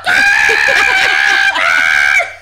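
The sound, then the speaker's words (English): A voice imitates a loud, shrill chicken squawk: a drawn-out, piercing cry that breaks briefly and resumes, sounding strained. “Well, there's the chickens that are like...”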